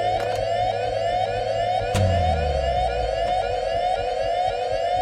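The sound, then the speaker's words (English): A station lockdown alarm, Protocol 3, blares as one loud, steady mid-pitched tone with a buzzy edge, unbroken for the whole stretch, as the doors close automatically. A single sharp thud cuts in partway through, and nobody speaks. “That alarm is Protocol 3, lockdown.”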